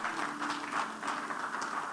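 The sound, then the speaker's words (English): An audience gives a clap of praise, clapping together in a dense, steady wash of overlapping hand claps that holds at an even level for the whole stretch, with no voices standing out. “Give him a mighty clap of praise.”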